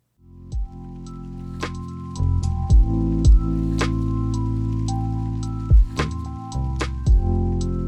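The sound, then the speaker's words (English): Watery splash and drip effects pop over a sustained, resonant musical drone, with several sharp droplet hits spaced irregularly across a short transition sting. No one speaks. “Yeah, but let's take a quick splash break, and then we're going to come back”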